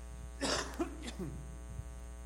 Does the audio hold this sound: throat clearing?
yes